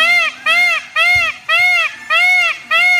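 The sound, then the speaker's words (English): A peafowl in Mexico calls loudly over and over: six evenly spaced, nasal, arching cries in a steady rhythm, each about half a second long, with a couple of soft thumps underneath. “Are those the birds in Mexico? Yeah, it's peafowl.”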